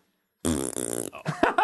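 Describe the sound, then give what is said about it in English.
After a short silence, a loud, buzzy mouth-made fart noise rattles for about half a second, followed by a few choppy breathy sputters and smacks. “You can't even make a fart or word noise.”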